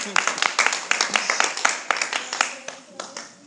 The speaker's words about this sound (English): Thanks for the four of y'all that clapped. I'm just kidding. There were six of you that clapped.